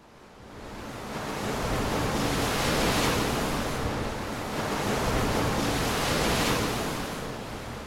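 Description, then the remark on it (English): Storm waves roar and surge with wind at sea around a rock in the dark, a dense wash of noise that swells into two long, heavy crests before easing slightly. No voices. “He was on a rock, in the dark, with the storm still raging around him.”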